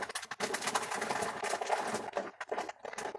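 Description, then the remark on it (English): Rainwater running off a tarp covering a house roof makes a steady, hissing rush with irregular spattering bursts and brief dips in loudness. No one speaks. “You could hear the water just coming right off of the tarp.”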